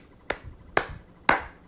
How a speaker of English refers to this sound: I'm clapping for you right now because you made it.